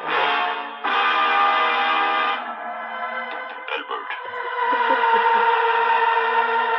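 Bells ring out loud in a sustained, layered peal, the overlapping tones holding and shifting for several seconds with no talking.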